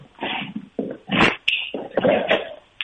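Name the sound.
dog growling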